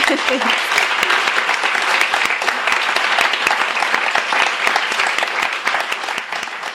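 Sustained, dense applause from an audience fills the room at steady loudness for several seconds, a bright wash of many hands clapping that tapers slightly at the end.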